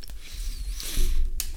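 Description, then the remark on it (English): Wet smacking of Bubble Tape bubble gum being chewed by more than one person, with a few sharp sticky clicks over a low, muffled mouth rumble, and no talking. “So please enjoy the sounds of us smacking while we get through this.”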